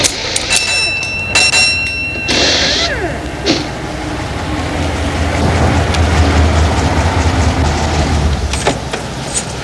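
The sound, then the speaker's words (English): A car brought in for a tune-up idles with a steady low engine rumble that builds slightly toward the middle, while a few brief ringing chimes and metallic clanks sound near the start. “She's bringing it in again. Gets a car tuned up once a week.”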